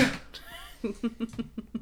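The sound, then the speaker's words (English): A sharp, breathy sneeze bursts out on air right at the start, followed by a moment of voiced sound and then a run of quick, rhythmic bursts of laughter. “Sneezing on air.”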